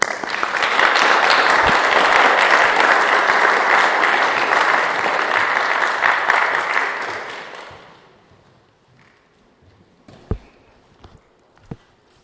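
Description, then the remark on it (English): A church audience claps together to give God a clap, a sustained burst of applause for about seven seconds, then it fades away, leaving near-quiet broken by a few sharp knocks. “So let's give God a clap.”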